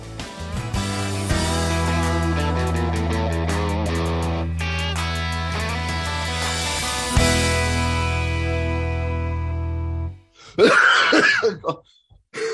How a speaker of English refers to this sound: You coughed there in a way that it was almost like a scene from The Exorcist. Like you were possessed. I think there was another person inside me there.